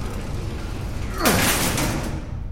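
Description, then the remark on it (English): Elevator doors just beyond the elevator's grate slide open as the elevator slows, with a sudden mechanical rush and a falling metallic whine, then a steady rumbling hiss that fades out. Low background hum throughout, no voices. “Elevator doors lie just beyond the grate this elevator used. They're opening.”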